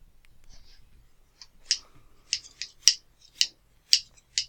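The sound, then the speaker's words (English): Scissors chop through a sturdy cardboard box to open it in a run of crisp snips, uneven at first and then more regular, growing louder toward the end, with no voices. “I've got some scissors now.”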